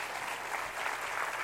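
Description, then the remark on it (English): A church audience claps their hands together in steady, dense applause, a continuous wash of many overlapping claps with no voices standing out. “Come on, clap your hands and say, Holy Spirit, have your way in our lives.”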